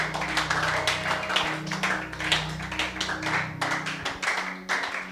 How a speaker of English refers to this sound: All right, so you may be seated. Just a few are clapping because you don't appreciate what God is doing. Just a few are clapping. Just appreciate what God is doing.